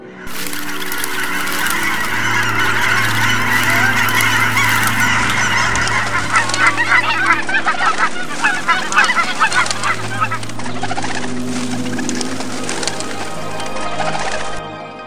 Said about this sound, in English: From the top of the tree, he watched all the geese fly away.